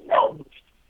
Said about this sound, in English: You said, can you tell that dog to shut the fuck up? Excuse me. I'm sorry, go ahead. Can you shut that dog up, please?